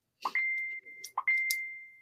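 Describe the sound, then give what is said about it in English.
Two bright electronic chimes from a phone notification going off twice in quick succession, each a short clicky attack followed by a steady ringing tone that slowly fades, clear with no talking. “Somebody needs to turn their phone off.”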